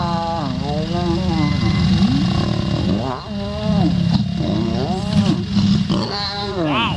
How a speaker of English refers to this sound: This is a lion mating right here.